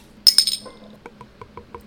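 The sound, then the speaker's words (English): A cluster of sharp, bright glassy clinks with a high ringing tone, as a beer bottle is handled and opened, then a run of soft, evenly spaced ticks trailing off. No one speaks. “We'll crack this thing open.”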